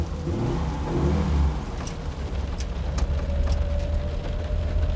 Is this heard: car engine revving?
yes